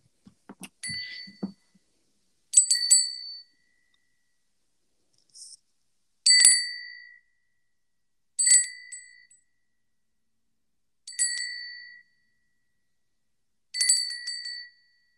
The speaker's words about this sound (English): Guys, I'm gonna sound cleanse my oracle. If you would also like to be sound cleansed, you can just sort of tune in and listen to what I am doing. I'm gonna ring this bell.